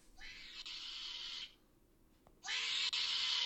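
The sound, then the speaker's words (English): A possum in a video game lets out two long, harsh hissing screeches, each over a second, separated by a short pause. The second is louder, and no one talks over them. “I don't think I've ever heard a possum make that noise.”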